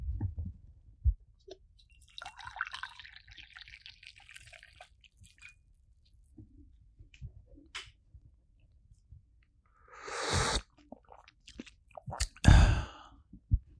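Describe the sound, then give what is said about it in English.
Vanilla red tea pours steadily into a cup for a few seconds, then after a quiet pause come two airy slurping sips, the second one louder and sharper. “I'm going to pour it, and you're going to listen.”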